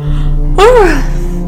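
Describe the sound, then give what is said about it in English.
A single human yawn, a breathy voiced sound whose pitch swells upward and then sinks away over about half a second, set against a steady low hum. “sorry, I yawned.”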